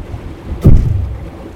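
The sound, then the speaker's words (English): A single sharp splash as a champagne bottle drops into the water beside a sailing boat, a brief burst over a steady backdrop of lapping waves and wind, with no one speaking. “Yes, it is just bobbing in the water.”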